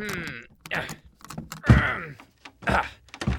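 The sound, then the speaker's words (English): The stuck door to the underground Kobold Mines creaks and groans as it is forced, with a heavy thud midway and a final scraping burst as it gives way, fairly loud with no voices. “Here we are, the door to the Kobold Mines.”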